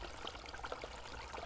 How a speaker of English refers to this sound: the water began to move to the sides. The dry ground appeared down the middle.